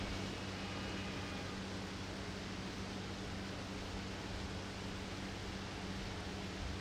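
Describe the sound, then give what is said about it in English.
A steady, dense rush of falling water fills the whole clip, continuous and unchanging, fairly full, with a low hum beneath and no voices. “The beautiful and sweet sound of the fallen water.”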